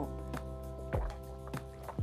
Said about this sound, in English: Well, it's Saturday night. I'm here sipping on some tea. So if you hear me sip, sip.